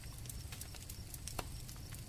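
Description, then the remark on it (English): Horse-drawn wagons approach along King's Lane in the distance, hooves clip-clopping in a steady rhythm, faint, over a low rumbling of wagon wheels rolling along; no voices. “In the distance, the growing sound of horse-drawn wagons could be heard making their way along King's Lane.”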